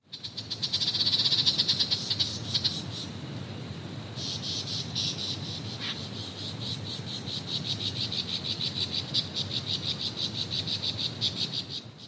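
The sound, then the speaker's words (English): A single male superb lyrebird's song layers mimicked sounds at once: steady rapid high chirping and trilling over rhythmic croaking pulses, dense and continuous like a chorus of frogs and insects, with no voices. “All of those different sounds were made at the same time by a single male superb lyrebird, a large songbird found only in the forests in Australia.”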